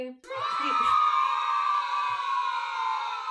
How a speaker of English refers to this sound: That's a very long cheer.